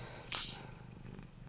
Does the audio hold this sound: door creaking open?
no